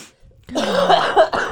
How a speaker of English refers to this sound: Now is it recording? Did you get that cough?